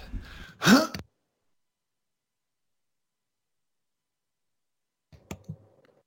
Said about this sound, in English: Sorry, I have to clear my throat.